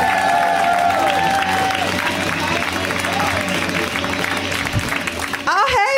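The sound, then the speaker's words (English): A loud, steady wash of stand-up comedy show audience applause and cheering welcoming the next comic, with shouts and whoops rising over the dense clapping and a few sliding vocal calls near the end. “Start clapping.”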